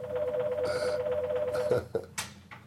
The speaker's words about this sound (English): And that's what happens on a live podcast. Every once in a while, you forget to turn your phone off.